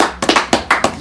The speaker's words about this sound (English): Once again, clap it up, man. It's a special guest tonight, like I said.